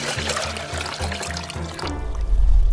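Water pours into a glass, a steady bubbling gurgle for about two seconds, then gives way to a deeper, louder rumble at the end. No one speaks.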